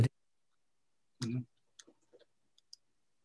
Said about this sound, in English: it's a parking meter. You put coins into it and the meter counts up the coins. And if you get 25, well, it's English pence, then it puts out a ticket for you so you can go park.